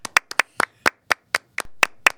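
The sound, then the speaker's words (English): Rhythmic church-style hand clapping, a dozen or so sharp, crisp claps in a steady beat with occasional quick double hits, fairly loud and with no talking over it. “And then church clap never stops.”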